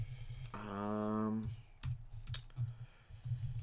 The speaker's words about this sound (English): Sorry, I'm having some trouble typing.